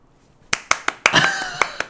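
A short burst of hand clapping, about half a dozen crisp, close claps at an uneven pace, briefly thickening in the middle before tapering off.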